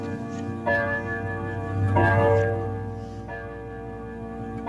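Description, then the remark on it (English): A grandfather clock chimes, ringing several resonant bell-like tones in a slow, steady sequence, each one lingering and overlapping the next, fairly loud with no talking. “It is a grandfather clock.”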